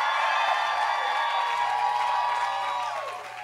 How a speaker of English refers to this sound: give this woman a big, big hand clap.